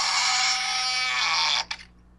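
A creaky door opening: a steady, harsh, rasping creak holds for about a second and a half, then cuts off abruptly with a brief thud-like tail. No one speaks.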